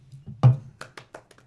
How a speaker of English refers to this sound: Can't clap too loud. Right, like, you gotta do the snaps, like, in the poetry slam.